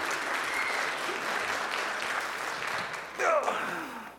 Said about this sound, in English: Yeah, you can clap, yeah.